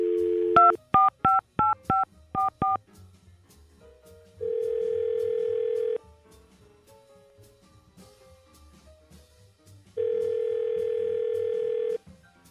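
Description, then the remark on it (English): A short burst of touch-tone dialing beeps in quick succession, followed by two long, steady ringback tones separated by a pause, heard clearly over a quiet line with no talking. “So now we're going to call Erica and find out why.”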